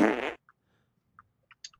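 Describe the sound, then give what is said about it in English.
A loud, buzzy fart sound effect drop called The Truck Driver, lasting about a third of a second, followed by a few faint, short squeaky blips scattered over the next second and a half. No one speaks. “Because he's been sitting in that warm seat all day?”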